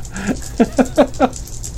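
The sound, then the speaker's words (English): A quick run of about five short clattering knocks, like dice tumbling and bouncing across a hard surface, with a low steady hum underneath. “I didn't even know if you were going to have me roll dice.”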